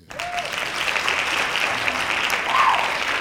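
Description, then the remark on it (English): A crowd claps steadily, a dense wash of many hands applauding at an even level throughout, with a faint whistle or tone briefly poking through. “Hand claps.”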